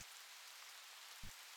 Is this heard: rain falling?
yes